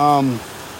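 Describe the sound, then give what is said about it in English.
A small stream flows with a steady, soft rushing babble that continues evenly throughout, with a person briefly speaking over it at the very start. “Just tiny stream, casting is dang near impossible.”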